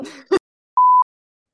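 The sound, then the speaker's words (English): A short throaty cough-like noise, then after a brief pause a single clear, steady electronic beep from a timer alarm ending a 7-minute nap, lasting about a quarter second, fairly loud. “That was my last timer.”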